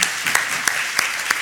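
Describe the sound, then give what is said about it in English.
An audience applauds a guest on stage steadily, a dense wash of many hands clapping at once, with a few sharper, louder claps standing out at regular intervals. “We have a round of applause for Aida Bache.”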